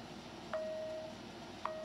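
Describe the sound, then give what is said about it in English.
Two thin, quiet bell dings about a second apart, each striking sharply then ringing on as a steady mid-pitched tone, like a boxing round timer, with no voices. “I mean, I guess it kind of sounds like a boxing timer.”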